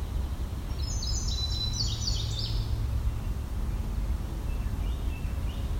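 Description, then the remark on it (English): A Carolina wren sings a quiet run of rapid, repeated whistled phrases, then a few fainter notes later, all set against a steady low outdoor rumble with no talking. “This bird's being actually quite quiet for a Carolina wren.”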